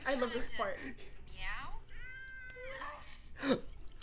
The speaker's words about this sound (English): No, I used to love that cat. I wanted it. You know, this was like, I love this part. Meow.